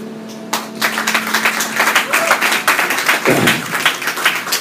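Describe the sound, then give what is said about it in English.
A church audience breaks into steady applause after a shared testimony, many hands clapping in a dense, loud crackle that continues throughout, with a low hum present briefly at the start before the clapping begins. “Can we just give an amazing applause?”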